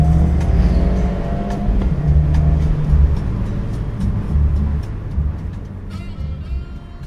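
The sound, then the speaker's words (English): A Fiat 124 Spider 1.4 turbo (Lusso Plus trim) exhaust note rumbles steadily, deep and loud, with low engine drone and wind rush over the open roof on an early spring day, swelling slightly as the revs rise and ease. No one speaks. “And the noise of the exhaust.”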